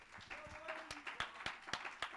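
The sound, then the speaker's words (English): A church audience at a Sunday afternoon sermon claps hands in a steady, quick rhythm, the sharp claps ringing out at an even pace over a murmur of voices and a faint sustained tone. “Somebody clap your hands and shout with a voice of triumph.”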